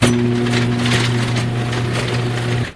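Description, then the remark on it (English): A MyQ garage door opener, triggered from a phone, runs with a steady, droning motor hum and a constant rattling clatter of the door moving, holding at an even loudness for nearly three seconds before cutting off. “This is the MyQ. From here, it basically gives you a garage door open.”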